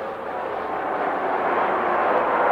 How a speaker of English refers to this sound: So Williams has to first, and the applause continues for him.